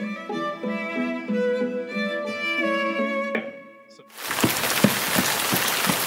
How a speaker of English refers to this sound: It's the first heavy rain of the year.